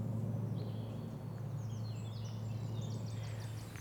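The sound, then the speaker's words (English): Outdoors among bluebells, birds sing in quick repeated chirps and trills, fairly faint, over a steady low rumble of background noise. No one speaks. “Nothing beats bird song and the crunch under, yep, our feet.”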